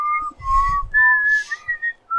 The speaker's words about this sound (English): Who's whistling? Voices in my head again.